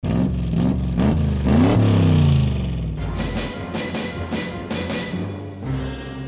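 A loud car engine revs in several rising bursts, then roars steadily as it accelerates off, with a rough, rhythmic texture continuing for the remaining few seconds.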